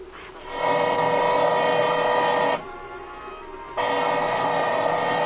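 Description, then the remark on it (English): A motorized drill boring into a safe grinds steadily with a high, buzzing whine, eases off for about a second mid-way, then picks back up at full strength. No voices are heard. “I can't hear nothing with my ear next to this drill.”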